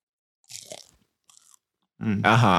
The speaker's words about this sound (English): From the person that's on the other side of the corner, all the crunching and dunching that you be doing.